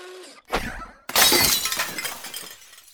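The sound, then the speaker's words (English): A sharp knock as a human fist attached to a pneumatic arm strikes a window, followed a moment later by a loud burst of shattering window glass, its bright crackling debris trailing off over a couple of seconds. No one speaks. “So the first item we attached to the pneumatic arm was, actually it was just a fist, a human fist.”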